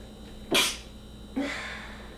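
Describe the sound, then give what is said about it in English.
Two sneezes about a second apart. The first is a sharp, loud burst; the second is slightly softer with a longer, breathy tail. No one speaks. “I sneezed like five times in a row.”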